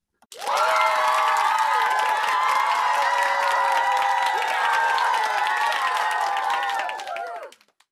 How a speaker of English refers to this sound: That was excellent! You are an amazing singer. Give yourself a big round of applause.